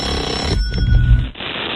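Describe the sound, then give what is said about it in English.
An alarm clock rings steadily and loudly for the whole moment, a sustained bright electronic tone over some low rumbling, played to wake someone up, with no one speaking. “These alarms, they don't work.”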